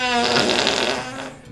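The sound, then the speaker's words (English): A long, loud, buzzing fart from someone wearing a diaper, with a rough, sputtering tone that holds steady for about a second before trailing off, with no talking. “I see your diaper starting to vibrate.”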